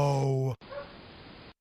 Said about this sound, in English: The raccoon's now on the table and that dog's just looking up at it, barking.